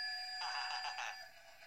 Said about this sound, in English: People are getting listening and going, "What the hell is that?" That's my Flying Scotsman clock. Goes off on the hour.